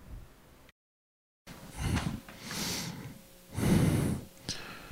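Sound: breathing into the microphone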